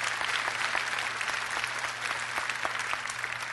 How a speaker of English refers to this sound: Would you give our lamb a clap offering?